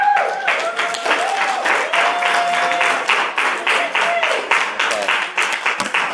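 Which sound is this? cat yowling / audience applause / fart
audience applause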